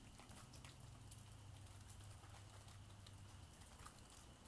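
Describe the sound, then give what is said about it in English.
Steady rain patters down continuously, a dense hiss of drops with scattered louder taps and a low rumbling undertone, heard alone without any voices. “So yes, find peace in the sound of the rain.”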